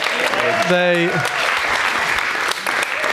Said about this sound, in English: Oh, can we just give a big round of applause to the tech team?